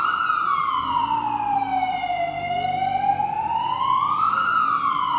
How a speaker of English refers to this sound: Well may the sirens blare, we are in danger.